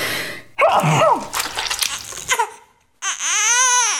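A loud sneeze bursts out with a voiced, breathy rush, then after a brief pause a warbling tone arcs up and back down to end.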